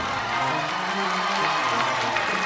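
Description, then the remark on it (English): An audience claps and cheers in a steady, dense wash of applause with scattered voices calling out, holding at an even loudness throughout. “Clap for where you want to be.”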